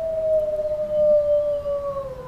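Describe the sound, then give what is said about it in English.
A wolf pack howling together: one long, steady mid-pitched howl sinks slowly in pitch while a fainter, higher howl overlaps it, over a low rumbling background with no talking. “You don't want another pack of wolves infringing your space and taking away what you think belongs to you, right?”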